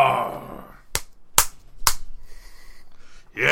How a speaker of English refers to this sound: Come sit around me and listen to the noise produced as I slap my thighs.